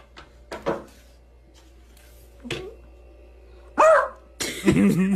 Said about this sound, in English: She's in the corner beside the fridge. Just barking.